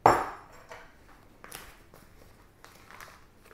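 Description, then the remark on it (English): A sharp glassy clink rings out at the start, followed by several softer taps and knocks as a glass of water is moved and set down, with no voices. “Get a glass of water, just like this.”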